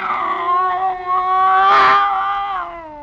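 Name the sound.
cat yowling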